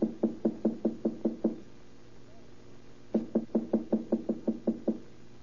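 knocking on a door

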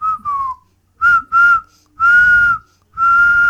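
whistling

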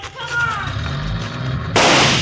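gunshot

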